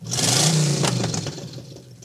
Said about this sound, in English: As the bus roared to life